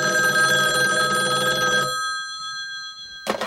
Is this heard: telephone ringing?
yes